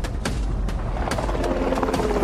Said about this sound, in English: The helicopter flew overhead, but continued to move